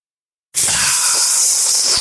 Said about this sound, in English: Let me take a little sip of coffee here.